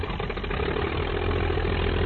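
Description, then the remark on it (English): A 1920s Travel Air biplane engine from a film's flying circus scene drones steadily for a couple of seconds, a continuous low, rumbling throb with a muffled, band-limited tone and no voices. “And if you're interested in the aircraft, it looks like the airplanes that they have here are Travelairs, which was a biplane of the 20s.”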